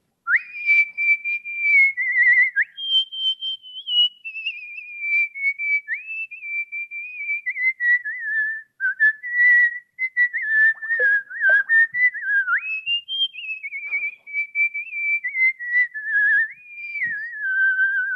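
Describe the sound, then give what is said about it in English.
A person whistles the waltz tune Waltzing Matilda solo, a continuous, clear melody with the pure tone stepping up and down between notes in a steady, lilting phrase, fairly loud with no talking. “This is Waltzing Matilda, and this is for my Australian whistlers.”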